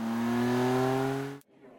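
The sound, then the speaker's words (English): A car engine revs loudly, its steady droning pitch climbing slightly as the vehicle pulls away, then cuts off abruptly. No one speaks. “Rules of the car. Get in, sit down, belt up, hold on.”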